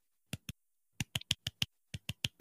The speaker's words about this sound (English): she's going to politely golf clap in the background.